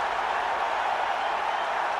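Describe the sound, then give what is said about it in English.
A huge stadium crowd roars in celebration after Rory Fallon's headed goal for New Zealand from a corner, a dense, steady wall of cheering that holds at full volume for the whole two seconds, with no distinct voices standing out. “The crowd does not come any better than this, Steve Sumner.”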